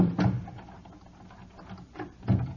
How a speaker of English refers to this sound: will you lock the door, please? Certainly.